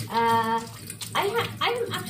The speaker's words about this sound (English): So let's see. Doing a little washing of hands here and cleaning up something.